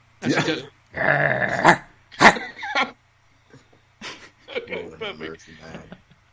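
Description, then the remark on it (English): A person imitates a dog-like growl the way David Arquette growls, in several rough, rasping bursts, loud at first and then softer and more broken toward the end. “Do you want me to growl like David Arquette?”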